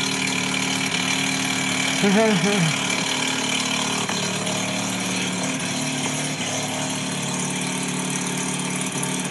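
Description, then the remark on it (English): The 12A rotary engine of a snow-covered 1985 FB car idles steadily, a constant rough, buzzing drone throughout, with a brief voice exclamation near the start. “I can get you some revs here if you want.”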